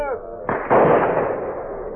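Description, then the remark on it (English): A hunter's gunshot on an island cracks out loudly with a quick second burst, then rolls away in a long, fading rumble of echo. A voice trails off just before the shot. “The vultures kept an obscene surveillance of the island, moving in the direction of each gunshot, spiraling downward with swift gracefulness.”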